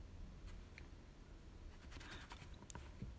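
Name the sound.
pencil writing on paper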